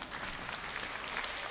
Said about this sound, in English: And so he says, no, you can clap. I like that.